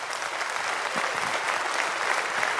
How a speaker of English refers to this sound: That's your cue to applaud. Go for it.